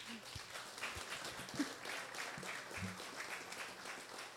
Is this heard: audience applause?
yes